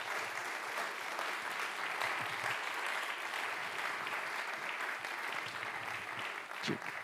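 Sustained applause from an audience for two people, a dense steady patter of many hands clapping at an even volume for several seconds, with no talking over it.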